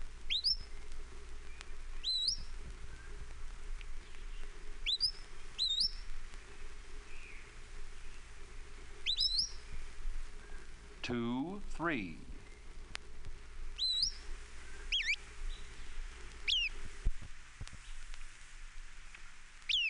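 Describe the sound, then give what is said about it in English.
Western Flycatcher calls: thin, sharply rising high-pitched notes, often doubled, repeating every few seconds over faint background hum, with one brief swooping sound partway through. “Western Flycatcher.”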